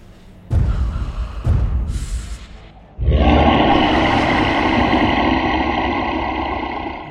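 A deep, distorted roar of an ancient green dragon: two short guttural bursts, then a sustained, loud, rumbling roar with harsh rasping texture that holds steady for several seconds.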